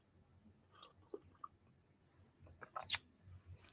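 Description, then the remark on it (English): Quiet sipping of hot cocoa from a mug: faint lip and mouth clicks, then a short slurp and swallow near the end, with no talking. “I'm going to take a sip of my cocoa.”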